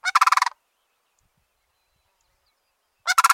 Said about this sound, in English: It's late winter, and cranes are calling loudly to one another. 15 species of cranes are spread across the world, everywhere but Antarctica and South America.